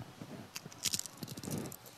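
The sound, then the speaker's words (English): Crunching of a homemade chip, served with salsa at the Carousel Club, being bitten and chewed: a quick series of crisp, crackly bursts over about two seconds, one sharp bite standing out partway through, with no talking. “I fancy myself a chip connoisseur.”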